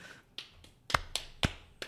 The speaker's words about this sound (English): You gotta clap your hands.